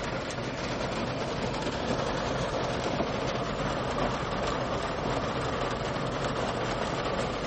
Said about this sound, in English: You guys hear the rain? I'm going to have to go in.